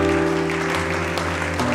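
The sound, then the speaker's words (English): A church audience claps for the Lord steadily and loudly throughout, a dense wash of many hands over a sustained low keyboard or organ chord, with no talking. “Give the Lord a clap in the house today.”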